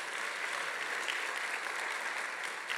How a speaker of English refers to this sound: I do want to recognize her because yesterday she just graduated from seminary. If we could give her a huge round of applause.